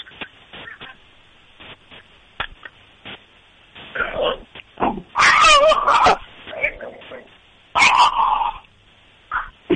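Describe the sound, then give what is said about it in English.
A dog named Murph lets out a couple of loud, sharp barks in separate bursts, mixed in with people talking over what sounds like a thin, phone-quality line. “So let's hear this dog of yours.”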